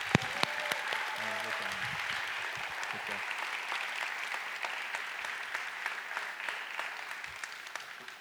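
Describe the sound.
A crowd applauds steadily, a dense wash of many hands clapping at a constant level for several seconds, with a brief murmur of voices near the start.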